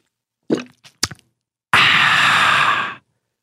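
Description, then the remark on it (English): A few quick slurping gulps of water, a refreshing sip, followed by a long, breathy, satisfied exhale of about a second. No talking. “Not to be confused with the that you may let out after a refreshing sip of water.”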